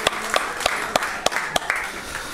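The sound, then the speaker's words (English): Audience applause for a worship team, with several sharp claps ringing out in a steady rhythm over a softer, continuous wash of clapping. It's moderately loud, and no one speaks. “How's about a nice round of applause for our worship team?”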